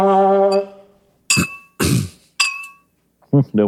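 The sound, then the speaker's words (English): Someone taps a glass three times to call a toast, each bright clink leaving a short ringing tone, with a drawn-out voice before the taps and a brief voice after. “Don't break your glass.”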